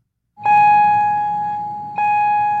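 A loud electronic school bell at Casa Grande Union High School, in a rural district outside Phoenix, sounds a steady, ringing tone, then strikes again about a second and a half later, over a low rumble of background noise.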